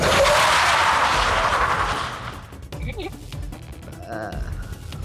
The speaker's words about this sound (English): And slam on my brakes again.